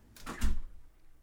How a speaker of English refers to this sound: Come on in. Close the door.